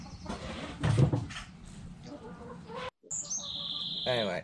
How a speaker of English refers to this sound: Anyway, it's a bunch of chickens clucking, and the one's about to go, ah, ah, ah, ah, ah!